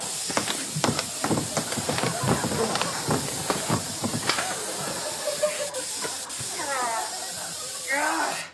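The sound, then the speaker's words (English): An aerosol roach spray hisses in a long, steady, loud blast that runs for several seconds, with scattered clicks and thumps and some wavering vocal sounds toward the end. “Hand me the roach spray.”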